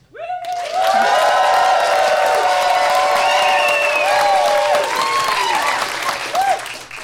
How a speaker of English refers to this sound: By applause, who should win International Waters live from Max FunCon? That doesn't mean start clapping now, sir.